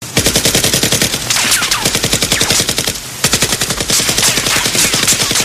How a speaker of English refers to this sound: The AK-47 thundered as he rained bullets down on them. The kickback from the powerful weapon was so strong that he had to brace himself as he gritted his teeth while curling his finger on the trigger.